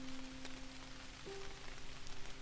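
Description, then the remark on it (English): Steady rain falls in a soft, continuous hiss with faint scattered patter, while a low sustained tone hums quietly underneath, gently shifting pitch partway through. “Keep feeling the rain, and it shines in the rain.”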